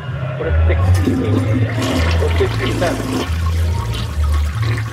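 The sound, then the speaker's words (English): A toilet flushes as someone tries to flush sheets down it, a loud, steady rush of water with a deep gurgling rumble that churns for the whole stretch, with faint muffled voices underneath. “I'm going to try flushing these sheets down the toilet again.”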